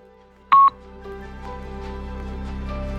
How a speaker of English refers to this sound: Please comment on this message after the beep, and here's the beep.